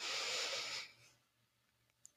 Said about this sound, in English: Let's imagine we're breathing in peace. We're breathing out stress. Let's inhale love.